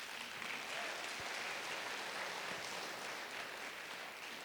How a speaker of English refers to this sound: Please give our performers another round of applause.